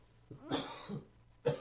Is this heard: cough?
yes